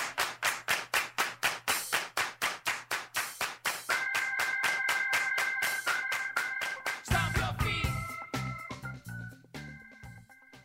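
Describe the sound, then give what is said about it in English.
Hands clap in a steady, even rhythm, around twenty sharp claps. A sustained electronic tone joins partway through, then music takes over as the clapping ends. “Put your hands together for a show about clapping”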